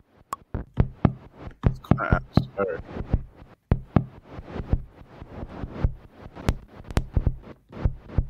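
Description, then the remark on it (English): A synthesized kick drum built from noise like TV static thumps repeatedly in a steady, fast groove, each hit a punchy low thud with a crisp, clicky attack, loud. “So we'll get a kick from this.”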